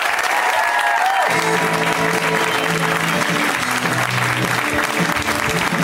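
A big, warm round of applause from an audience welcoming a comedian onto the show, steady dense clapping with scattered cheers, loud and sustained from start to finish, with faint background music underneath.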